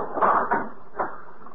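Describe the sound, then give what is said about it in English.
Heavy hangar doors rumble and scrape as they slide shut, ending in a dull thud a moment later, moderately loud, with no voices. “You better close the hangar doors.”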